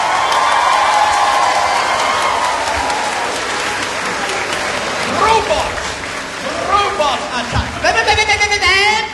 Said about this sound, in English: Come on, let's warm him up. Let's give him a soft round of applause, everyone. Come on, let's warm him up.